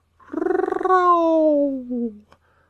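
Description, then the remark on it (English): A person imitates a gentle roar with one voiced cry that opens with a rattling growl, then slides downward into a drawn-out, softening moan lasting about two seconds. “But I will aggravate my voice so that I will roar you as gently as any sucking dove.”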